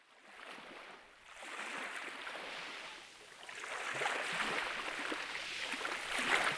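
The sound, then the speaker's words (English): Water of the rising tide on the Mekong River, at the shore in Myanmar, sloshing and lapping steadily, a continuous splashing wash that swells louder over several seconds, with no voices. “Oh no, looks like the tide is rising on the Mekong River.”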